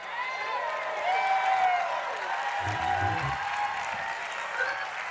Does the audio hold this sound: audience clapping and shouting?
yes